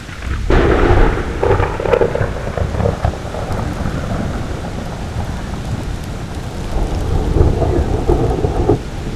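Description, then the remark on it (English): A loud thunderclap from a thunderstorm in Utah cracks and rolls through steady rainfall, its deep rumble swelling at the start and again near the end, with no voices present. “Our thunderstorms here in Utah are not very big. Every once in a while you get a good one.”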